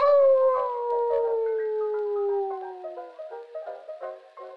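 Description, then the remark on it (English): A long, eerie werewolf-like howl from a radio drama slides slowly downward in pitch, loud, then breaks into shorter wavering wails toward the end. No one speaks. “Apparently, it caused 2 shootings in Iowa from people who thought their neighbors were really werewolves.”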